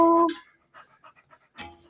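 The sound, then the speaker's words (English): A young female dog, not yet 9 months old, pants in short, breathy bursts, with a brief whine at the start and a louder huff near the end. “Oh my God, your dog is so cute.”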